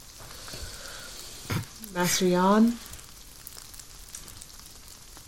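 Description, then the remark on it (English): A steady, soft hiss of light drizzle patters continuously in the background, with a short spoken phrase partway through. “It starts to rain a little. Drizzle's coming down.”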